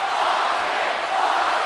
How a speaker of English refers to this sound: Go ahead and cheer your little lungs out. Go ahead.